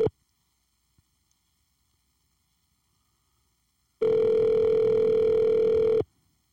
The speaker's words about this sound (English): Let me try to call my partner back. He called like 8 times. Let me see. Answer your phone, player. There we go. We got a ring.